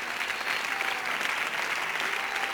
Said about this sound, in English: Somebody clap your hands right now.